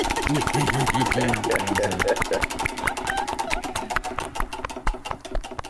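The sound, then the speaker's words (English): Cuts of meat attached to a spinning prize wheel, including pork loin, ribeye, ham and Queen City sausage, slap against it in a rapid, sharp ticking rhythm that gradually slows and spreads out, with a low murmur of voices underneath at the start. “You can hear the different cuts of meat slapping.”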